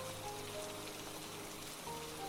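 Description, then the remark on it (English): Steady rain falling in the woods as it gets dark, pattering down on a surface, a dense, even hiss of drops with no pauses, moderately loud, with no voices. “it looks like it's going to rain”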